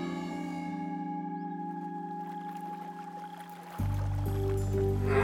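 A heavy old wooden rowboat is dragged across dock planks by a first-time rower in one long, droning groan that shifts lower and louder partway through, steady with no voices.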